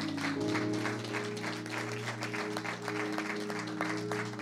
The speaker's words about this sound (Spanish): Primero vamos a darles un aplauso.